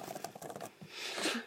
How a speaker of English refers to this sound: And I just spammed my keyboard for no reason.